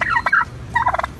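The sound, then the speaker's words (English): A turkey gobbles in two rapid, warbling bursts of high, wavering notes separated by a short pause, with a low rumble of background noise underneath and no talking. “You can't do, the turkey won't let you do anything?”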